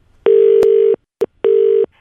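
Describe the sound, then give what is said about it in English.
A telephone ringing tone of an outgoing call to a furniture shop that sells sofas, heard down the line: two steady, loud electronic bursts with a short clicky blip between them, clear, no voices. “Here he is ringing a place that sells sofas because he's lost loads of stuff.”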